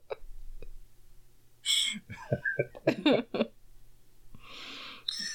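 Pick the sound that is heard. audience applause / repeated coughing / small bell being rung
repeated coughing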